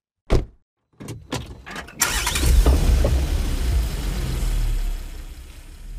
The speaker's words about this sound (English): We're on our way. Oh, I love driving to new places in the car.